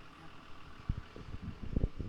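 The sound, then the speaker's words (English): A food truck that has just pulled up idles its engine at low volume, a steady low rumble with a few soft thumps rising out of it, and no one speaking over it. “We just had a food truck pull up.”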